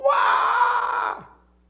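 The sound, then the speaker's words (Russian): A voice imitates a newborn baby's cry: one loud, sustained wail lasting about a second, ending in a short downward drop in pitch, then silence. “Он начинает кричать.”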